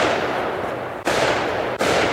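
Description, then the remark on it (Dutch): A dense, continuous crackle of fireworks being set off somewhere in a rapid barrage, heard from a busy club car park in Lanaken, with two sharp new bursts starting the volley over again. The sound is steady and fairly loud, with no voices. “Als we uitstappen, horen we al dat er ergens vuurwerk wordt afgestoken.”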